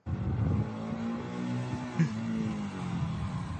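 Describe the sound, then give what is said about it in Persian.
A motorcycle ridden by a mullah pulls up in front of a camera; its engine idles and revs steadily, a deep droning hum rising and falling slightly with a brief sharper rev near the middle, with no one speaking. “یا آخوندی هم پشت موتور میاد با موتورش جلوی دوربین میسته مثل جان ویک و مردم رو نصیحت میکنه.”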